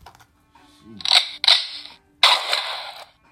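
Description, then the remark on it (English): Three loud gunshot blasts in quick succession, each a sharp crack trailing into a brief noisy echo, the final shot ringing out a little longer. No one speaks. “That should be the universal sign for Sagittarius. The gunshot.”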